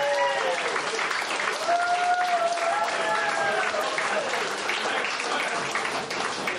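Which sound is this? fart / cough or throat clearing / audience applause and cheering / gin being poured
audience applause and cheering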